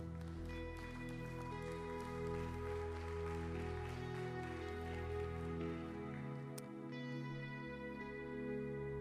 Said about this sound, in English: Come on, can you give us a hand clap of praise in the house?